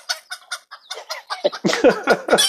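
Several chickens cluck on a chicken farm in quick, overlapping bursts, the calls growing louder and busier toward the end, with no one speaking.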